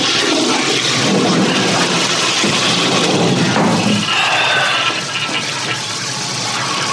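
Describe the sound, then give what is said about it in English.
A toilet flushes with a loud, steady rush of water that shifts into a swirling gurgle midway, then settles into a softer, hissing refill. No one speaks. “No, toilet still works.”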